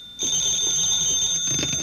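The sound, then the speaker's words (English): A telephone at Mr. Benny's residence rings in one steady, shrill burst, a bright metallic trill that holds for the whole moment with no voices over it. “how come you're answering the phone?”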